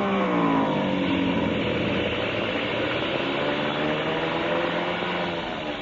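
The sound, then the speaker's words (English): A loud airplane engine that has been acting up drones steadily as the plane comes in fast to land, its pitch sliding and wavering, easing off slightly at the very end. No voices. “Engine been acting up. I was afraid to trust it.”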